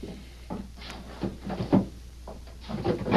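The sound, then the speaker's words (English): The top drawer of a wooden chest slides open and shut, giving a few short scraping, rattling bursts and a soft thump at moderate volume, with no voices. “look in that chest over there and bring me the small cardboard box that's in the top drawer.”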